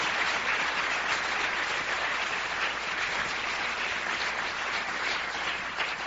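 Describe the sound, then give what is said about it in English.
A church audience clapping their hands for God in steady, dense applause that stays loud and even for the full six seconds, with no voices rising above it. “Come on, clap your hands.”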